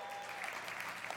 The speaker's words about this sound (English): It's just so funny that we cheer so much for the Buffs sometimes and we forget that that what we just saw was actually more important.